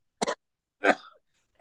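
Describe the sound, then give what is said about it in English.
Two bursts of coughing and throat clearing from a person still fighting a lingering cough: a short sharp hack, a brief pause, then a longer, rougher cough that trails off, with no talking. “Are you it, still dude. Fighting that cough, dude?”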